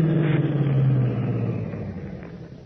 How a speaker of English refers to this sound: Then, suddenly, over the deadly tone of Stark's voice, Batman is conscious of another sound, an approaching car, and Stark is silent again.